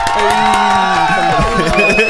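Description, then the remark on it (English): A small group cheers and whoops loudly, with voices overlapping and some clapping, sustained for about two seconds. “Can I get a round of applause?”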